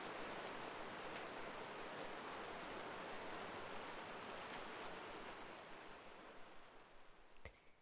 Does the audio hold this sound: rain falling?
yes